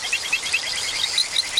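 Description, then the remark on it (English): A recorded and mixed collection of poison dart frog calls: a steady run of short, high chirps repeating about every fifth of a second over a dense, hissing chorus of insects and other frogs. No voices. “Darren Meyer and Davey Stiles recorded and mixed this collection of their calls.”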